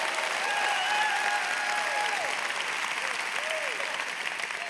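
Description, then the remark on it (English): An audience claps steadily, a dense, continuous wash of applause that holds at an even level throughout, with a few faint voices or whoops rising above it now and then. “Don't clap.”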